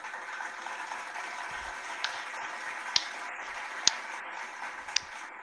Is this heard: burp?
no